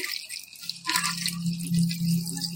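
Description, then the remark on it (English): Liquid pours steadily into a glass, a splashy hiss with a ringing hollow tone underneath, as a cocktail made with orange juice is poured back and forth between glasses for a couple of seconds to mix it. “This is an old bartender trick. When you're at your tailgate, just pour it back and forth.”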